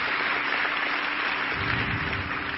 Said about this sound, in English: Give a loud clap, a loud clap.